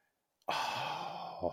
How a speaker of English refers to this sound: You hear the gasp, everybody?